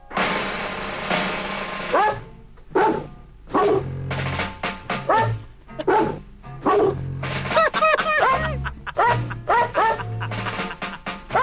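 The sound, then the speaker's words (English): A record of dog barks and yips arranged into a tune, the pitched barks following a melody over a steady musical backing, loud throughout. “Okay, by the way, back to this dog record.”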